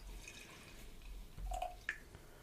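Water trickles and drips inside a beer glass as it is rinsed out, with a couple of brief ringing tonal plinks as liquid swirls. Quiet and short, with no voices.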